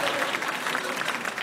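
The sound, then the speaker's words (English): Steady audience applause, a dense wash of many hands clapping at an even, fairly loud level throughout, with no distinct voices rising above it. “Clap it up for him.”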